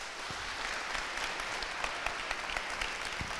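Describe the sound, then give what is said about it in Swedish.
A crowd of about 500 people at a student evening claps steadily to welcome guests Horace Engdahl, Liv Strömquist and Björn Werner, a dense, continuous patter of many hands for a few seconds, with a few sharper individual claps standing out. “Vänligen ge dem en varm applåd.”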